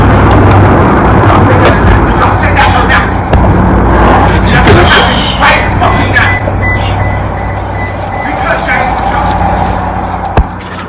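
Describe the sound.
A steady, loud roar of street traffic with a low rumbling undertone, cars swelling past one after another, while indistinct voices carry faintly beneath the noise.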